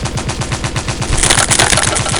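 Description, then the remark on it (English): Rapid bursts of automatic gunfire rattle loudly and continuously as men and women shoot through a door, the shots intensifying halfway through into a dense, crackling barrage with splintering impacts as the door is torn to pieces. “The door is torn to pieces by gunfire.”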